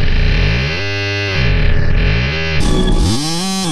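A dense, buzzy synthesized tone from a granular synthesizer loops and warps, the grain size set small enough to affect the pitch, its pitch sliding and jumping as tiny grains repeat, with a gritty, distorted edge and a sudden brighter shift near the end.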